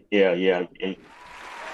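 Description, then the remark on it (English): A loud voiced shout gives way to a short stretch of applause, a steady wash of many hands clapping at moderate volume that continues to the end. “And for that, I want to say thank you, bro, and give you a round of applause.”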